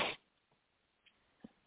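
A single sharp sneeze bursts out right at the start, then quiet follows with only a few faint soft thumps and rustles.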